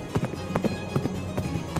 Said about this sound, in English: You can hear their footsteps as they get closer and closer and closer. You can hear the hooves of the pale horse,